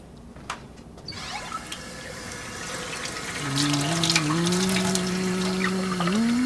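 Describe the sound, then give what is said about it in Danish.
A tap runs steadily with a rushing hiss; partway through, water fills a glass or container, and a tone rises in pitch as it fills. No one speaks. “Nej, jeg skulle bare lige have noget vand. Ja, det venter på dig i hanen.”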